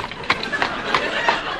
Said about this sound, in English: I am none other than Dick Turpentine, the notorious highwayman, and this is my famous horse, Black Beauty.